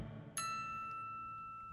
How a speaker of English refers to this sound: You heard the chime. It's tarot time.